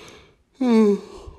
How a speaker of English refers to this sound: Another yawn.